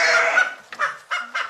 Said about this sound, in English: Oh, yep, that was one sheep.